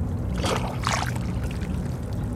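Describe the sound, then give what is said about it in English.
Seawater trickles, gurgles and sucks through crevices among large rocks covered in barnacles and seaweed, with tiny wet clicks where the water meets the barnacles and splashy bursts over a steady low rumble of the surrounding city. No voices. “The tiny clicking sounds that you hear are the meeting of the water and the barnacles.”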